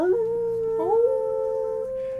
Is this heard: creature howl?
yes